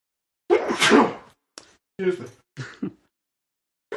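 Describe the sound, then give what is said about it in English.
A loud sneeze bursts out, followed by a few shorter breathy, throaty sounds like sniffs or throat clearing, then silence. “Tried to sneeze away.”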